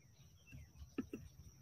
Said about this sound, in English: Multiple bird sounds.